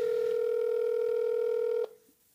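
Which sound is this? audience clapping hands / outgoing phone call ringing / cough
outgoing phone call ringing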